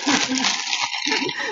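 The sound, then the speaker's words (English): Loud, crackly crunching of chips fills about a second and a half in a steady, rustling burst, with a faint voice murmuring underneath at moments. “I mean, I could crunch some chips here.”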